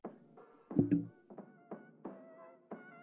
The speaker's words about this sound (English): No, someone just, I think it's my new credit card. Like mine's about to expire, so just put it under my door.